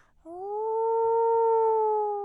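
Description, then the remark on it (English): A creature lets out a long, sustained, piercing howling scream that rises and holds steady for about two seconds, loud, with no talking over it. “You're frozen, watching in terror as it raises a snout too long to be any animal's and lets forth a piercing, howling scream.”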